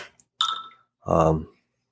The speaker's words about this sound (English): What the hell is that? I'm not really sure. I think the aliens just landed. Oh, it was your phone. Somebody forgot to mute their phone.